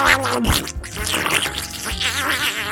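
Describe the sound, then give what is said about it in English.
The cartoon character Donald Duck's angry, garbled voice sputters in raspy, buzzing bursts, loud and continuous for a few seconds with no clear words. “It was Donald Duck. That was indeed Donald Duck. When he got angry”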